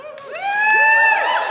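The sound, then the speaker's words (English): An audience breaks into cheering, with voices rising into a loud, sustained whoop over a crowd murmur for a second or so before starting to fade. “I would have missed the applause.”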